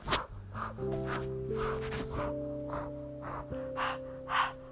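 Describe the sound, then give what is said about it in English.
Rhythmic, forceful breathing of a labor breathing exercise being demonstrated, quick breaths repeating roughly twice a second, with steady sustained tones humming underneath and no speech. “I'm doing a breathing exercise where I rotate my body in a circle of 360 degrees, and I'm there.”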